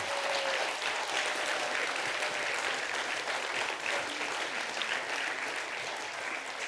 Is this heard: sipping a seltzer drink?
no